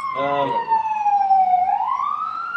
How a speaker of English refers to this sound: And sorry about the ambulance. Ambulance is passing by as somebody apparently got hurt. Oh. Is it an ambulance or a police car? I can't see.